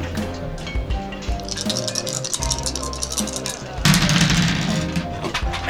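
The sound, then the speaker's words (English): Dice, let go gently rather than thrown, clatter and bounce back off a tabletop in a quick, uneven run of light, sharp clicks, heard under ongoing talk and a steady low background hum. “I'm not even throwing them, really. I'm letting them go as gently down as I can. And, the table is kicking them back off.”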